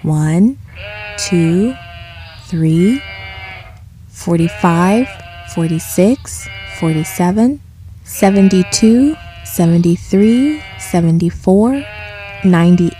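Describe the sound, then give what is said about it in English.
A flock of sheep bleating loudly, a steady stream of wavering, nasal baa calls overlapping one another in bursts with only brief pauses between them. “Before he went to bed, the shepherd counted his sheep to make sure that they were all there.”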